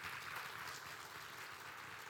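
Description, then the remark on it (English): An audience claps together in a steady, dense burst of applause, many hands patting at once with a bright crackling texture that holds even throughout without any voices. “Therefore, I'm clap for the person.”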